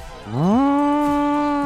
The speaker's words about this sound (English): I got the cows behind me, bringing it in.